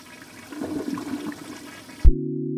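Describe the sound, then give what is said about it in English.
A toilet flushes with a swirling, rushing gush of water for about two seconds, then cuts off abruptly into a thump and a steady low tone. “Like, the one that comes to mind most, that I find most boggling, but I use every day, is the toilet.”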